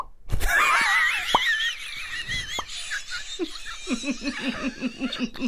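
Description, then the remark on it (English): A voice imitates a fish with a wavering, squeaky high-pitched warble, then breaks into a quick run of rhythmic bubbly pulses, with no words spoken. “Do you want to hear mine? It's the fish.”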